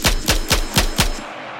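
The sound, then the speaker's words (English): Five sharp, loud gunshots fire in quick, evenly spaced succession, each a hard crack with a booming low end, followed by a short fading echo and no voices; a man who got out of a car is gunning down three people. “And a guy gets out of the car, and he guns down three people, and I'm watching this whole thing.”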